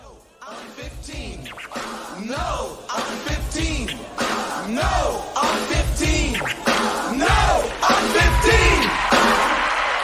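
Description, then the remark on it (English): A cartoon sound effect of Goofy screaming, a string of loud yells that swoop up and down in pitch, repeating over and over with no pause for about ten seconds. “With Goofy screaming with them.”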